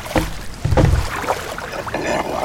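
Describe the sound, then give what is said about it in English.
A small rowboat moves through water, with a couple of splashy strokes and low thuds against the hull amid soft sloshing and faint wind, and no voices. “The boat is near you.”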